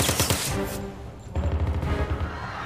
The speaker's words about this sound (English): That was gunfire.